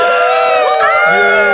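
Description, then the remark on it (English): A large crowd in the Church Arena at the Church Bowl cheers wildly as Commissioner Gabriel Goodell steps to the center of the stage, many voices shouting and whooping together in a loud, continuous roar that fills the whole moment without a break. “Interior Church Arena moments later, the crowd is cheering wild as Commissioner Gabriel Goodell steps to the center of the stage.”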